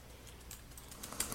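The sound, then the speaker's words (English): Soft, quick keyboard typing as someone types notes, a string of light clicks at an uneven pace, fairly quiet with no one talking over it. “I'm typing it in my notes that I'll be talking about vibrations.”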